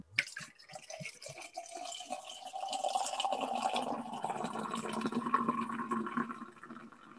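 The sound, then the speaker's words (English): Golden beer pours into a glass: a few quick splashes and drips at first, then a steady, fizzy gush of liquid whose pitch gradually rises as the glass fills, leaving bubbles and a three-finger head of foam. No one speaks. “So there's bubbles in the glass. I've got like a 3-finger head.”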